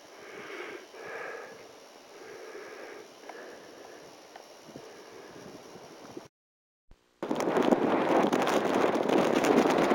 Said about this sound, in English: Just a little windy.